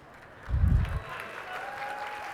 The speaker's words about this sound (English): Thank you. Are you applauding for Adam Driver, who is lovely, by the way?